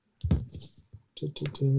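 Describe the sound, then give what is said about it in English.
Papery rustling and scraping as a paper record sleeve is pulled out, in two bursts separated by a brief pause, with a short hum of a voice at the very end. “I'm just pulling out not the record. A bit of paper. I'm sure it's got a proper name. Where is it? The sleeve.”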